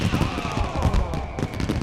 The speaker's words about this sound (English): With a flourish, he threw his fist into the air, and there erupted a great firework.